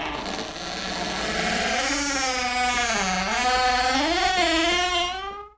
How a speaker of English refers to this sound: Lisa swallowed a scream, and the attic door opened with a long...